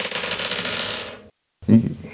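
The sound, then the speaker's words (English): Dice are rolled in a game to resolve a creature's grabbing attacks. They clatter and rattle in a dense, steady burst for over a second before tapering off, then after a brief silence a short, louder knock as they land. “So let's roll some dice.”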